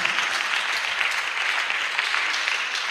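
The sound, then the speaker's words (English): Sustained applause from a crowd, a dense steady patter of many hands clapping at once, fairly loud and continuous for the whole stretch with no talking. “Oh, if you are clapping, clap well.”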